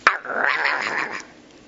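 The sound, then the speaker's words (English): A small Chihuahua dog lets out a sharp, high-pitched yap followed by about a second of rapid, shrill barking, fairly loud, with no one talking. “Little Chihuahua dogs.”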